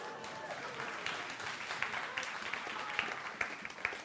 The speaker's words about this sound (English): I thought I deserved a round of applause for that, yes.